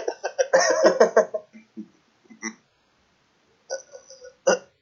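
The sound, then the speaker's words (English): A person coughs in a harsh, rattling fit of several hacking bursts, then, after a short pause, a few more scattered coughs, loud and with no talking. “As I cough blood onto the card.”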